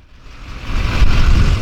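A truck engine rumbles as it pulls up close, its low growl swelling steadily louder over a second or two before settling into a steady idle. No one speaks.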